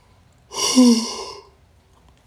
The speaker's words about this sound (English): excuse me, I want to yawn.